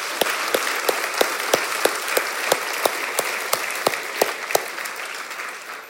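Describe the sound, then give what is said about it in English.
Sustained audience applause, a dense wash of many hands clapping, with one sharper clap standing out in a steady, quick rhythm throughout. No one speaks over it. “Ladies and gentlemen, another round of applause.”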